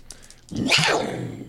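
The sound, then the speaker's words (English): A person imitates a mountain lion (puma), letting out one loud, raspy, throaty snarl that bursts in after a brief breathy pause and holds for about a second before trailing off. “Okay, I'm gonna turn into a mountain lion, a puma.”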